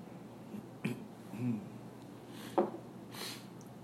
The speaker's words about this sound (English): And also, I wanted to have a sip of my coffee. Clear my throat there.